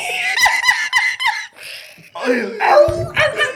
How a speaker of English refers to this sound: The dog trying to speak at this point.